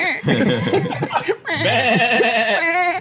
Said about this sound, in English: Goat. The goat.